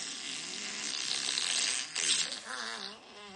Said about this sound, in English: Well, let me just flush that. Okay, let's get that out of here. Yeah. Flush my toilet.